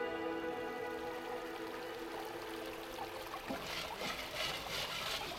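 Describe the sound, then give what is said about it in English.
Running creek water flows steadily at Sawmill Flat, California, a continuous rushing trickle that grows a little splashier toward the end, with no voices, as a person standing almost knee-deep in the frigid creek submerges a pan in the running water. “I plucked a few stones and pebbles from my pan and tossed them back into the creek, then bent over and submerged the pan in the running water.”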